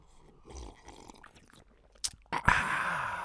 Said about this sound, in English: Well, let's have a bit of a palate cleanser. Palate cleanser. Mm. A instant coffee sip.